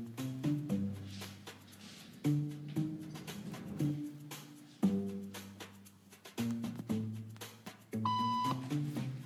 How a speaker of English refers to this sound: It doesn't take long for our test subject to notice a pattern. Beep means stand up. But why? And if you were in her shoes, what would you do the next time the tone sounds?